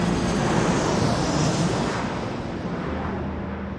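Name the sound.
airplane engine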